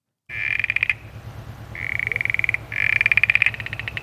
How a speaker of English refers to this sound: And although they looked very similar, again, they had very different calls. So here we go. This one is the southern smooth froglet.